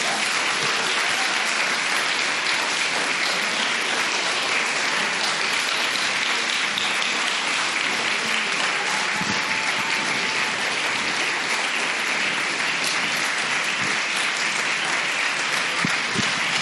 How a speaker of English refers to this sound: Guys, thank you for clapping so long, because it took me fucking forever to get up here.